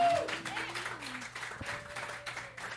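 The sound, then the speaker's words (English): An audience at a live music and stand-up comedy show claps steadily for a few seconds, dense and fairly loud, with faint cheering voices mixed into the applause. “Clap it up for yourselves.”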